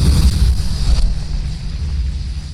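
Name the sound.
explosion sound effect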